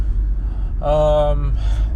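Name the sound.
car driving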